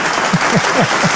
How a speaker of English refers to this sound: Well, I loved the virtual applause, man. It's very apropos for the situation right now.